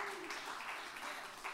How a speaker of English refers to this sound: Hey, I'm raising my hand tonight. You're raising your hand tonight. You're clapping your hand tonight.